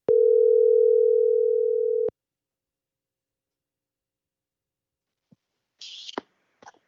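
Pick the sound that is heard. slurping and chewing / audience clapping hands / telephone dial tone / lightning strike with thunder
telephone dial tone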